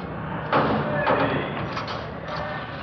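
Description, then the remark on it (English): A heavy jail door at the main jail slams shut with a solid thud, then a second clunk follows as it locks, with a fainter knock after. Low, indistinct voices murmur underneath. “You want to step aside there? They want to lock that door.”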